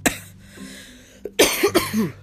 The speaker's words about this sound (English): What was a small cold, I think, on Monday or Tuesday is now a big cold. And right now it's winning. I do not feel great. I have got to take another day of rest. I can hardly talk without coughing.